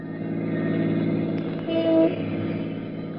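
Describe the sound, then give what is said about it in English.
A car carrying a policeman drives along with a steady engine rumble and road hum, and a short horn toot sounds partway through. No one speaks. “Meanwhile, as I learned later, Pat was traipsing around, of all places, in a car with a friendly policeman.”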